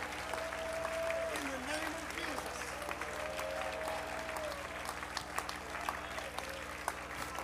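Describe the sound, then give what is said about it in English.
A church audience claps their hands to the Lord in a dense, continuous patter that keeps up steadily, with sustained musical tones and faint voices running underneath. “And with your lifted voice, you would begin to clap your hands to the Lord.”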